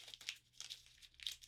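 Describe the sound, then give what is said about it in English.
Crisp crinkling and crackling of a twenty paper money bill being crumpled into a little ball, several bursts in quick irregular succession with short pauses between. “You're crumpling it up into a little ball and you're going to throw it at me and not even hit me with it.”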